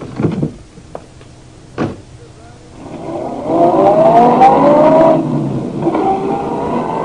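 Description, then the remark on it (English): A car door thumps shut, followed by a second thump, then an engine starts and revs up, rising in pitch as the car pulls away and drives off. “I watched, perplexed, as Dawson climbed back into his car and drove off.”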